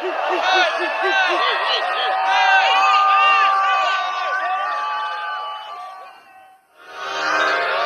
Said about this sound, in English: the crowd erupts in excitement as he enters.